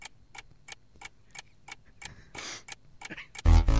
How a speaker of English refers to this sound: Would you say this is the best thing you've ever done with our lives? Here's 5 seconds of ticking sound to find out.